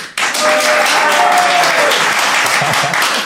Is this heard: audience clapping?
yes